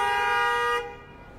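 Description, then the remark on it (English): A loud car horn blares in one steady sustained blast in Brooklyn street traffic, then cuts off abruptly, leaving a low rumble of street traffic behind it. “And, you know, understandably, the cars behind it are upset because there's really no reason.”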